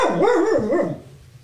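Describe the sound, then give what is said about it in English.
A female dog barks in a drawn-out, wavering yowl lasting about a second, loud and alone, then trailing off into quiet room noise. “What is she even barking at?”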